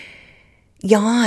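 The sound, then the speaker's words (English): A faint breathy inhale, then a person lets out a loud, sustained growling roar in imitation of a lion as a breathing exercise, continuing to the end. “Roar like a lion. Like imitate any animal.”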